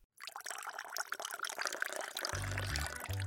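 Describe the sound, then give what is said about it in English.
Boiling water pours steadily into a teapot holding mint with a splashing, gurgling rush, fairly loud, while a low tonal hum rises as the pot fills near the end. “Then add the mint and then fill the pot with the boiling water.”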